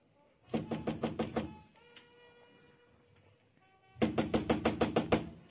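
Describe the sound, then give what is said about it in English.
Two bursts of rapid, loud knocking on a door at the end of a hall on the third floor, about six sharp raps, then a quiet pause with faint background hum, then another quick series of eight or so knocks. “Come on, open up, Harvey. Move away from the door, Mugovan. Open the door, I'll break it down.”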